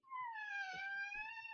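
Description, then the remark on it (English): A single drawn-out creak of a door hinge as a door is adjusted, held as a steady high whine that bends slightly in pitch, fairly loud, with faint low knocks underneath. “Was that a kitty cat? No, that was me. It was the ghost. Adjusting the door.”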